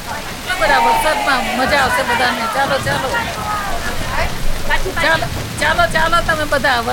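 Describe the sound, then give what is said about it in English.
Heavy, torrential Indian monsoon rain pours down in a steady, dense hiss, while excited voices chatter and call out loudly over it throughout. “They've been waiting a long time for the rains. It's torrential. This is a typical Indian monsoon.”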